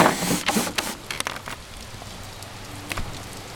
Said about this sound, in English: But it is raining out right now. Opening the window from the top.